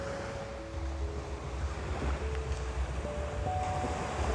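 Steady ocean surf rolls and washes continuously, a broad roaring wash of water with wind rumble, no speech, with faint tonal hums drifting underneath.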